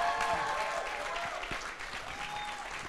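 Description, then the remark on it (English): A live crowd applauds steadily, the dense patter of clapping holding at a fairly even loudness throughout, with a few whoops and cheers rising above it. “And listen, I like the crowd in here today, man.”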